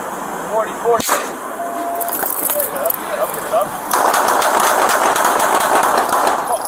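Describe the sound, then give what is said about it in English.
A single sharp, loud pop of a 40mm less-lethal round being fired near the start, over muffled voices and street noise that grows louder and harsher toward the end. “when you hear the 40 round go off, and watch his reaction when the 40 round goes off”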